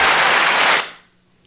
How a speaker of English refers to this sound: That was an abbreviated. Yeah, what's clap going on there? Got cut off there. Yeah, the clap got cut off there.